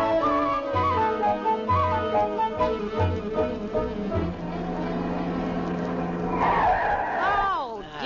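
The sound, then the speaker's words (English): A car skids to a halt with a loud, wavering squeal of brakes, the screech swelling near the end over a steady rumbling engine drone. “Get them brakes fixed.”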